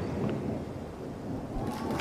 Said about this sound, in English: Applause breaks out as though a cascade down each of the terraced gardens.